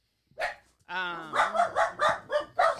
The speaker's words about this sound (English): Sorry. Yep, there's the dogs. Hey, chill.